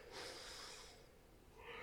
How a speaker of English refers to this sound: That was a less dramatic yawn.